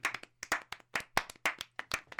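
A small group claps briefly, brisk irregular hand claps overlapping in quick succession, close by and moderately loud, with no talking.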